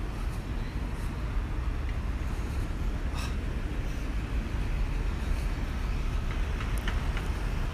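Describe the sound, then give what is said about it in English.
Deep, steady diesel truck engines rumble by the NYC AIDS Memorial Park at St. Vincent's Triangle in New York City at 9:49 p.m. on February 22, 2019. It is a continuous low drone with faint higher clanks and hisses scattered over it, and no one talking. “Trucks. That's what I hear.”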